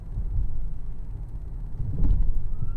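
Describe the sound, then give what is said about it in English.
A steady low rumble of a car interior while driving, with a deep engine and road drone that swells slightly toward the end, no voices present. “And again, yes, I'm in my car recording this episode.”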